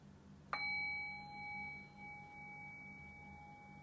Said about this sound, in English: Okay, so I'll ring the bell and we're into the practice.